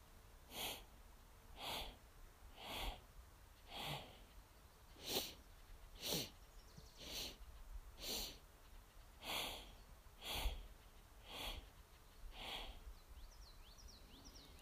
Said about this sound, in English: So the breath pattern is, once I get into a steady rhythm, I begin to inhale in four sniffs as I take four steps. And then exhale in four sniffs as I take four more steps.